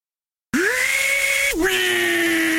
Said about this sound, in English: 18-volt drill driver. 8-piece combo kit.